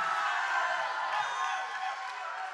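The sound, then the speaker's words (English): A large church crowd cheers and shouts continuously, a dense wash of voices with scattered whoops, sustained at steady loudness throughout. “Look, if there's more cheering for the Super Bowl, we're going to do this sermon over.”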